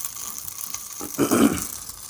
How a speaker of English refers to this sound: Here I am frying up the patty, the stuffing patty, not much to talk about there.